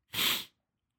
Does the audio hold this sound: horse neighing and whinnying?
no